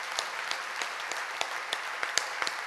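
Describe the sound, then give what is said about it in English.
An audience claps together for the Lord in a steady rhythm, sharp accented claps landing about three times a second over a continuous wash of scattered applause, with no voices standing out. “Let's clap for the Lord.”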